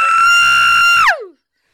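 Two people let out a loud, piercing shriek together, held steady for about a second before the pitch slides down and quickly cuts off into silence.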